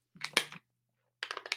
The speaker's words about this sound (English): I'm going to take a sip of this water because I'm parched after all that. Excuse me.